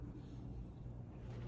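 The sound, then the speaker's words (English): Steady outdoor wind roars and rumbles, a continuous low buffeting noise with no voices, lasting the whole short moment. “It's getting windy.”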